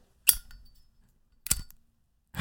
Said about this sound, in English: Okay, the other thing is a lighter, which is literally hit. Fire machine. You can imagine like the old school lighters where the flint, right? You're just kind of like whacking striking on, the yeah, flint. Striking the flint.